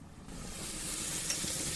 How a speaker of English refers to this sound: I'm just going to brush it over the steak, and I'm going to pop the steak, and we should hear a sizzle. If I don't hear a sizzle, not committed to the moment, I can take it off. So let's lay it on.